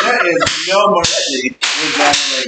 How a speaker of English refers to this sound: So, in other words, that it's a, 20, a lot of noise. 24 inch long two pieces of leather slapped together. That's the sound of the man working on the show.